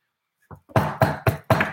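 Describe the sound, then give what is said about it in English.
Four loud, solid knocks on a hard tabletop in a quick, even rhythm, preceded by a couple of faint taps. No one speaks. “I need a softer table to knock on.”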